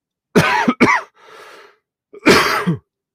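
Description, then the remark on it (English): A loud coughing fit: two sharp coughs in quick succession, a raspy wheezing breath, then another harsh cough, with no talking. “Sorry, podcast, and I cough right in the middle while I'm live.”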